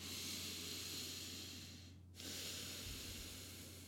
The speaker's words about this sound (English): So nose breathing.